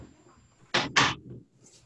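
door being closed

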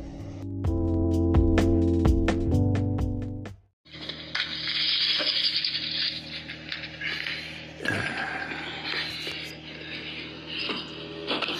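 shower water running

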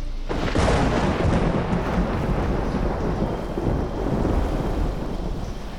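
thunder rumbling

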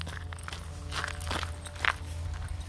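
footsteps walking outdoors

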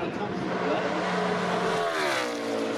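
race car engine revving

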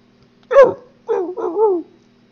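dogs barking and whimpering

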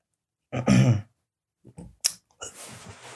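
hiccup

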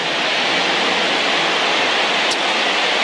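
heavy rain

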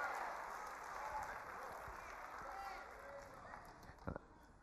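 audience clapping

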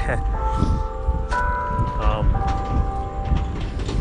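bell ringing

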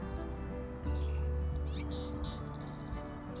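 birds chirping and singing

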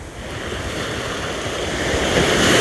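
ocean waves

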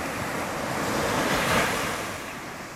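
crashing ocean waves

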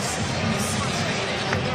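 arena crowd cheering

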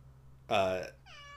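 cat meowing

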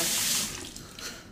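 water running

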